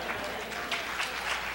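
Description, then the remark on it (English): An audience claps their hands in a steady, dense wash of applause that holds an even level throughout, its many overlapping claps blending together with a voice faintly underneath. “Do you really mean that hand clap?”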